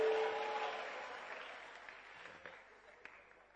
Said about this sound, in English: Ah, he's a different one. Oh, he's a very bright one. Clap again for him. He deserves.